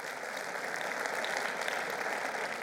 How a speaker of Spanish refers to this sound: Den un aplauso al Señor si se lo va a dar con ánimo.